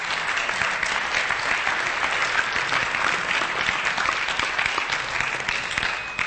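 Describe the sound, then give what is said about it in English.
A church audience applauds steadily to welcome the new pastoral intern, a dense, even wash of clapping that holds at a constant loudness for the full six seconds with no voices heard. “You didn't even do anything, and you got applause.”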